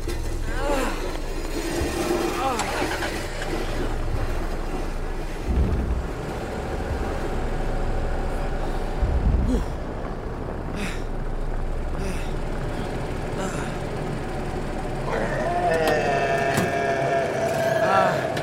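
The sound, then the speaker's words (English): A truck engine rumbles low and steady, idling continuously with a few heavier thumps, and a higher mechanical whine rises over it near the end. “No, get the truck over here.”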